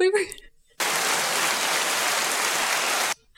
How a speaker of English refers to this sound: I'll make it rain right now. Make it rain with some sound effects.